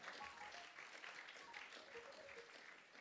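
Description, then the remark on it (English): An audience of students applauding themselves, a dense, steady wash of many hands clapping together that holds at an even level throughout, moderately loud. “Clap for yourselves.”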